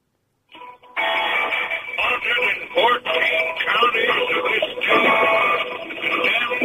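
A rock song plays down a caller's telephone line on a radio phone-in show, sounding thin and tinny with no deep bass, running steadily at a fairly loud level after a moment of silence.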